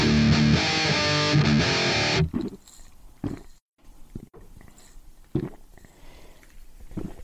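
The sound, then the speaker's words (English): Beer being poured: after a loud, dense musical burst cuts off, low gurgling glugs come in uneven spurts, with quiet gaps between the bubbly pulses. “I'm pouring this beer and it looks pretty much the same hue and color that the last one did.”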